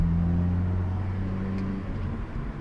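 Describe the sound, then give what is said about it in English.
The twin exhausts under the rear diffuser of a Hyundai i30N Performance Fastback, a front-wheel-drive car with a little over 270 horsepower, give a steady, throaty low burble, a deep rumbling engine note holding an even pitch throughout with no voices over it. “There's a nice throaty burble to the twin exhausts underneath the diffuser at the back of this Hyundai i30N Performance Fastback”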